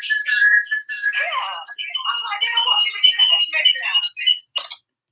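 A phone ringtone plays for an incoming call from Tina, a busy warbling melody of chirpy high electronic tones running steadily for about five seconds before cutting off abruptly.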